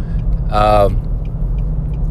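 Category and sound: vehicle, passing car traffic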